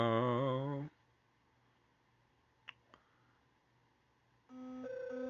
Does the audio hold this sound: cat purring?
no